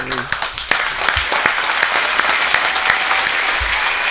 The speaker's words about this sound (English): Round of applause